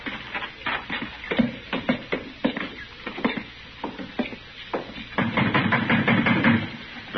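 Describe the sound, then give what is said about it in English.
Someone bangs hard on a wooden door on a hot day, a series of irregular, heavy thuds that grow denser and more continuous near the end, with no voices. “Banging on the door.”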